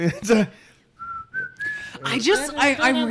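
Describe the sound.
A person briefly whistles a few sustained, gliding notes of a jaunty tune, clear and close, with excited talking just before and laughing chatter right after.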